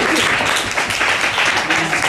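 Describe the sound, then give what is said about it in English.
An audience applauds a guest host as he stands up, steadily and loudly, a dense wash of clapping hands that holds at an even level throughout, with faint voices mixed into the noise. “Round of applause.”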